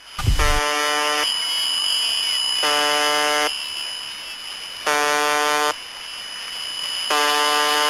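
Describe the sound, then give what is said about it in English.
A harsh, droning buzzer tone from a Russian shortwave radio station, broadcasting almost non-stop since 1982, sounds in four long, evenly spaced blasts, each over a second, against a steady bed of crackling radio static. No one speaks. “Yes, this extraordinarily creepy station has been blasting beeps on shortwave radio almost non-stop since 1982, and in recent years has become something of an online sensation, picking up at times 200,000 regular listeners.”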